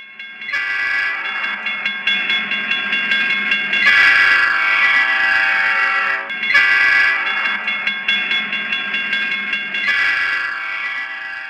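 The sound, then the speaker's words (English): A train horn blares in several long, loud blasts separated by brief breaks as a train approaches a road railroad crossing, with a low rumbling of the approaching train underneath and no voices. “And as you're driving down the road, you notice down the road there is a railroad crossing you're coming up to.”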